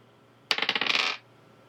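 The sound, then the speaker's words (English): Dice are rolled to determine damage in a game, clattering onto a hard surface: a sharp first hit followed by a quick run of bright rattling clicks that tumble for under a second, then stop. No one speaks. “The oak tree is going to attack the door, and I'll just roll damage.”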